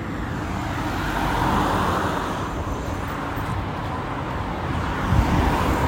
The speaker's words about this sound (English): Car. Car. Car.